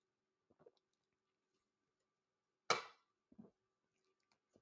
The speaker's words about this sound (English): I'm going to take a sip of my Diet Coke.